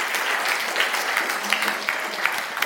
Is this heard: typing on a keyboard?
no